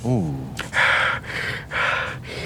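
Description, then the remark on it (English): Heavy, labored breathing from the woods: four rasping, breathy pulses in a steady rhythm, loud and harsh. A short hummed voice sound comes just before them. “You begin to run towards the woods, towards the labored breathing.”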